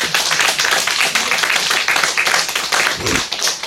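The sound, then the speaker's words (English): A crowd claps steadily for the person beside them, a dense patter of many hands with no clear rhythm, loud and sustained throughout, with a brief voice rising faintly underneath near the end. “Clap for the person beside you.”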